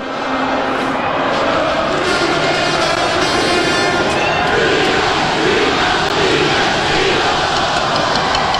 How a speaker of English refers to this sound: Look at this. We got guys with horns playing. They're playing the fight song right there. Look at this from a fifth floor window at the University of the Arts, the Miriam Theater.